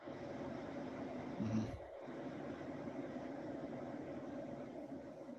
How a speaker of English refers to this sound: Was there an airplane going over your house? What, right now? Well, you got some loud-ass noise coming through your microphone. Oh, no, I turned my fan on because I got real lightheaded and hot.